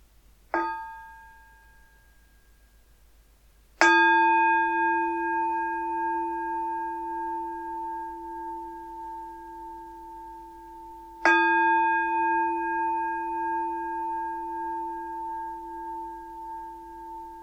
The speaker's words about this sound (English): So if you want to make yourself comfortable, I'm going to start with three sounds of the bell and the usual settling in introduction.